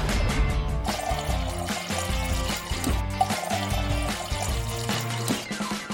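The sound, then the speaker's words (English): Water pours steadily from an Unclean smart mouthwash machine that turns tap water into ozone mouthwash, a continuous trickling stream heard under loud rhythmic background music. “This innovative device turns tap water into ozone mouthwash in just seconds.”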